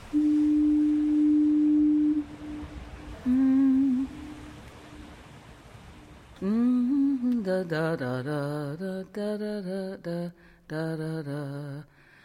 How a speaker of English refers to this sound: Of course, this isn't really the sound of fog. Fog is something you can't hear on the radio. This is a foghorn, a thing that evolved entirely because of fog. So it's kind of like the voice of fog.